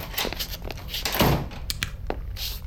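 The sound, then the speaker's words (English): A manager's office door in a store thuds shut with a heavy bang, followed by a scatter of sharp knocks and bumps as something is shoved against it to barricade the room, fairly loud, with no talking. “Let's pick up the action as they try to barricade the room from errant ghoulites.”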